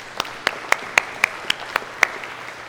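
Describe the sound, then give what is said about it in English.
A Lutheran audience claps in a steady, even rhythm, celebrating the reduction of the church's mortgage, about nine sharp claps in under three seconds with a faint background hum and no talking. “So the balance now, as the end of this, yeah, go ahead, we can clap.”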